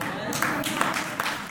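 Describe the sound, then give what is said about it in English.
A crowd applauds steadily, with a dense wash of many hands clapping, fairly loud, mixed with indistinct voices throughout. “Don't clap too soon.”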